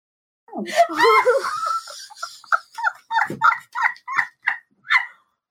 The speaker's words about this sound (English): No, we turned off the fan and he started snoring. Oh my God.